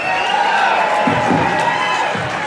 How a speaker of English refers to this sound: Look, Raider Nation cheering